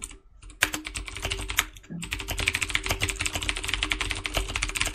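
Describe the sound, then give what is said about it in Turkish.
Fast, forceful typing on a computer keyboard, a dense stream of sharp clacks after a brief pause at the start, with a low hum underneath and no voices. “klavyeyi dövüyor resmen”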